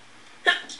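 Two quick sneezes close together, the second sharper and louder and cut off at the end, each a sudden breathy burst against a quiet background.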